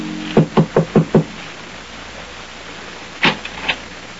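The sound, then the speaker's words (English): Five quick, firm knocks on the wooden door of number 16, Rue de Roche in Paris, in an even rhythm, followed by a pause and then a couple of fainter thumps, like a latch or the door being handled. “Hans Minkler makes his way through the maze of Paris traffic and knocks at the door of number 16, Rue de Roche”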